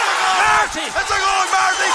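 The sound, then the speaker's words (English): A stadium crowd on its feet roars and cheers at a goal chance for Carlo, a loud, sustained wash of noise, with a commentator's excited voice rising and falling over the top. “For Carlo, the crowd are on their feet here.”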